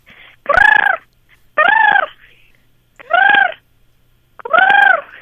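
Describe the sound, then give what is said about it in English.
A person imitates a sandhill crane, giving four loud, rolling, trumpeting calls at a steady pace. Each call rises and falls in pitch, with short silent pauses between them. “I hear you do a pretty good crane as well. Do you want to test that out with us? Oh, yeah, the sandhill cranes.”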